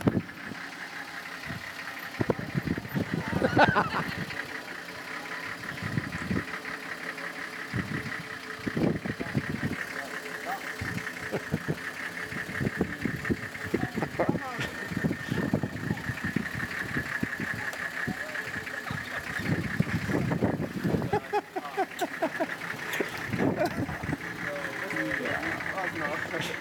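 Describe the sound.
A car engine hums and idles steadily as the vehicle creeps forward on a risky drive into the entrance of a priest's guest homes in Ethiopia, with indistinct voices and occasional knocks and bumps over the running motor.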